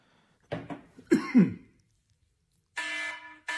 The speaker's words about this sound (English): Warning, a cough has been detected. For your safety and the safety of others, authorities have been dispatched and will be arriving at your location shortly.